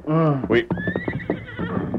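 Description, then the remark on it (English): The horse Silver, startled by a big eagle, lets out a sharp whinny with a rising, quavering pitch, followed by a brief high whistle-like tone over snorting and shuffling noises, all loud and sudden. “Silver must have seen him from the corner of his eye and been startled.”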